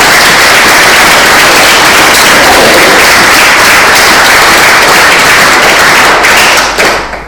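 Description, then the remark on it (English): A crowd applauds loudly and steadily, countless overlapping claps merging into a dense, crackling wash that holds for about seven seconds before tapering off at the very end. “I'll tell you what, let's give you a round of applause now.”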